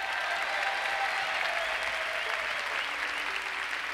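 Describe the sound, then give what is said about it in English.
Steady audience applause, a dense wash of many hands clapping at an even, sustained level throughout, with a faint murmur of crowd voices beneath it, following the introduction of the performers. “Thank you for the well-deserved applause.”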